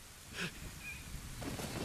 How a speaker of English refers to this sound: It's raining. It's dark and stormy.